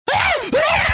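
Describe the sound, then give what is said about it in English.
A person imitates a pug's yelling bark with two loud, strained, whiny vocal bursts in quick succession, with no other talking. “So, and the way pugs bark too are kind of, they just yell.”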